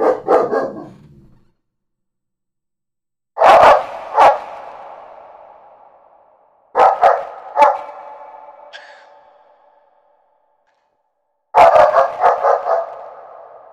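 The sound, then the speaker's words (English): A dog barks a warning in loud bursts, usually a quick pair of sharp barks, repeated about four times with short silent gaps, each bark trailing off with a faint ringing echo. “Thank you for warning me. Yes, that's a good puppy, but I don't need to get warned 637 times.”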